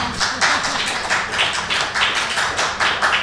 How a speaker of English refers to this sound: That's all for our questions, and I'd just like to thank these ladies again for joining us on Saturday, and ask everyone to give them a warm round of applause.